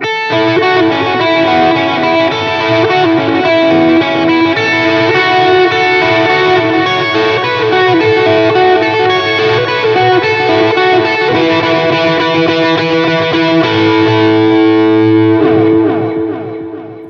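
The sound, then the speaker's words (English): A distorted electric guitar plays a melodic lead line through an Edwards pedal, with a rhythmic dotted-eighth delay repeating each note, sustained and loud throughout, ringing out at the end with no talking. “And a little lead stuff with the dotted eighth.”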